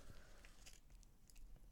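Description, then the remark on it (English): Soft biting and chewing of a thin, chocolate-covered peanut crunch bar with no crunch, with several brief moist mouth clicks and squelches over a low steady background hum, no talking. “Oh, it's soft. Oh, it's not. Okay. There is no crunch in that whatsoever.”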